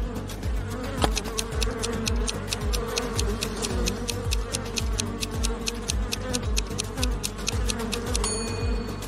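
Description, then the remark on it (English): A dense swarm of angry bees buzzes loudly and agitatedly, with a steady droning hum and rapid clicking pulses running throughout. No voices are present. “A bear or a swarm of bees?”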